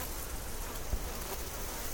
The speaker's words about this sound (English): Bees dance and drum, drum with their wings and their waggling bodies and their stomping feet and fill the balls of paper called hives with perfume.